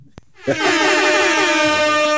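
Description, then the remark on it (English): A single loud air horn blast bursts in after a short click and holds steady and blaring for nearly two seconds, with no talking over it. “Hold on. Air horn's coming.”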